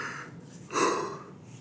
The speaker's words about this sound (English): Oh, see, here's a yawn.